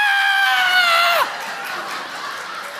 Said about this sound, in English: So we just started screaming. Now I'm not talking about our church screams, like our "Yeah, Jesus." I'm talking blood curdling screams. No holds barred.